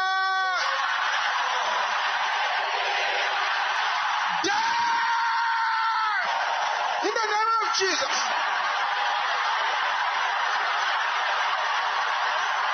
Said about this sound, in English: Can I hear the brothers shouting the same thing? Brothers, your voice is not loud enough. Everybody together.